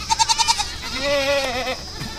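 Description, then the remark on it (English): A goat bleats: a quick, stuttering run of short pulses, then a longer, quavering cry that wavers before trailing off. No one speaks. “And speaking of noise, goats, chickens, pigs?”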